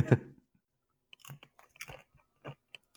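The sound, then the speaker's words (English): Close-up munching: a loud crunchy bite at the start, then a few irregular, crackly chewing sounds with short pauses between them, no talking. “What are you munching on there, buddy?”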